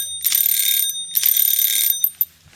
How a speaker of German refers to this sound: Du hast jetzt dreimal geklingelt.